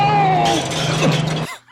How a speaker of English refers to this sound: she whips that thing around and it trips Bond. And we get our very first instance of the James Bond Wilhelm scream.